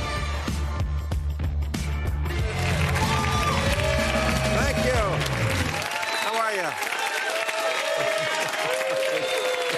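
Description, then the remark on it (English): A happy, maskless studio audience at a late-night TV show applauds and cheers loudly, steady dense clapping with scattered whoops, first under a short burst of band music, then on its own once the music stops. “Such a happy, maskless crowd we have here.”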